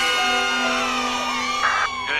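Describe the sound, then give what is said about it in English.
A group of Springfield Elementary children in The Simpsons cheers loudly and continuously in applause for Milhouse's birthday party, excited overlapping voices whooping and shouting for a couple of seconds, with applause mixed into the noise. “Oh, and by the way, I'd like to say thanks and applause to birthday boy Milhouse for his totally bitchin' party on Saturday.”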